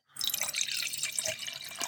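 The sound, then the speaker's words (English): A small pour of a drink into a glass, a steady trickle of liquid splashing and gurgling for about two seconds, with no voices. “So if you'll, as I, you know, struggle to breathe, hand me your glass. Thank you. There is a little pour for you.”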